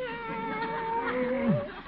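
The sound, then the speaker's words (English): A cat lets out one long, drawn-out meow, a whining tone that wavers and then bends sharply downward at the end, with no one talking. “The cat's back again.”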